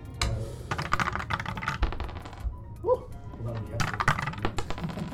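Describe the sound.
A six-sided die (d6) clatters down through a dice tower during a tabletop game in a rapid, uneven flurry of sharp clicks and rattles, with a brief pause and a faint voice midway before more tumbling.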